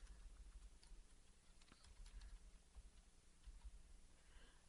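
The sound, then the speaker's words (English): Faint, irregular clicks of keys being typed on a keyboard, quiet, scattered over a low steady hum with no voices. “Okay, you're going to hear me typing because I am still kind of confused on what their drama was before.”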